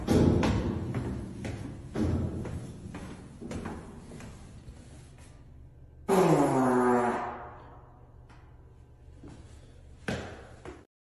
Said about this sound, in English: Day 77, stairwell farts. Kind of a letdown for fart, but just excited that it happened.